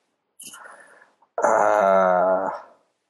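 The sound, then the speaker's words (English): A misbehaving dog whines: a brief breathy, snuffling sound, then one sustained, loud, tonal whimper lasting about a second before it fades out. No one speaks. “I have a misbehaving dog.”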